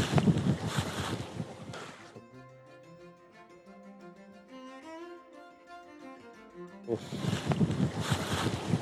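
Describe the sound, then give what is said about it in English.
Rushing river water on a long riffly glide at a bend, where someone is fly fishing, with gusty wind buffeting the microphone, loud, briefly giving way to a soft melodic music passage in the middle before the water and wind return. “So I'm just on the river now, and the first stretch I'm fishing, it's kind of a long riffly glide on a bend”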